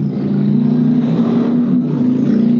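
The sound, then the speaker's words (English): A car engine revs loudly, a steady droning roar with slight rises and dips in pitch over a couple of seconds, with no voices. “And that's the motor revving, trying to get my brain in gear, and it's not working very well.”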